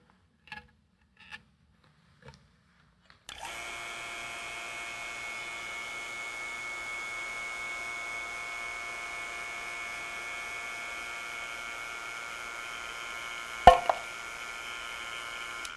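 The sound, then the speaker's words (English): After a few soft clicks, a vacuum pump starts up, pumping air out of a vacuum chamber holding a can of potato chips. A steady, whining mechanical drone runs continuously, broken near the end by one sharp, loud pop as the lowered pressure opens the can. “So what you saw there is that I was actually able to open the can of potato chips just by lowering the pressure outside.”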